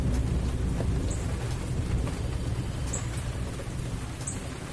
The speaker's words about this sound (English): I guess the rain hit so hard, started coming down hard enough that it really shut that little bird up, didn't it? He was out here all confident when it was just a drizzle, but now that it's a steady downpour, that bird's really shut his yapper.